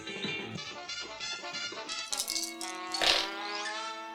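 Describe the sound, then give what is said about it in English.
Dice rolled during a tabletop role-playing game rattle and clatter in a steady, busy burst of clicks lasting a few seconds, with a sharper flurry of knocks near the end and no voices. “I rolled 2 5s.”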